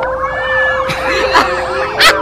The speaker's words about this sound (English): Who's the baby crying? It's a cat!